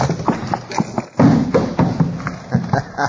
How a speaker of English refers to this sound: Drop that trap door in place. Yeah, here goes.